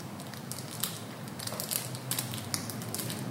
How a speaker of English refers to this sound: And again, so that's tinfoil. Twigs add to a campfire, which is great. Same kind of noise.